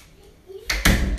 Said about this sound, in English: Okay, can you close that door, please? Nope. Right, where was I? No, open the door. It's too windy